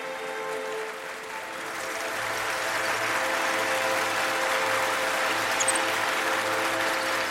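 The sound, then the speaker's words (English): Steady applause from a crowd, a dense wash of many hands clapping that swells slightly after the first second and holds at an even, fairly loud level throughout. “There's clapping and there's a woman talking, so I'm gonna go with Evita.”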